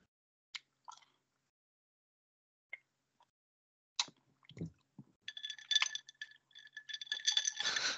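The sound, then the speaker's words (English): Glass clinks and knocks: a few isolated taps, then a dense stretch of bright ringing clatter and rattling as a vodka bottle jostles against a glass. “I hope we can hear the we can hear the clinking of the vodka.”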